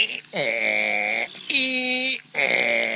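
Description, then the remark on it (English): A person imitates a donkey bray: three loud, strained, nasal cries that alternate between a lower and a higher pitch in a hee-haw pattern, with brief breaths between them. “Funny noises they make. Oh, them there are donkeys.”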